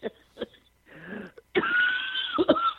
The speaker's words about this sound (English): Sorry. Sorry. I'm coughing, so.